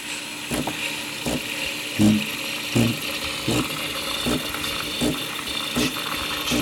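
An espresso machine's steam wand, which has a temperature readout, steams milk with a steady, bright hiss, broken by regular pulsing chugs or clicks about every three-quarters of a second. No one speaks.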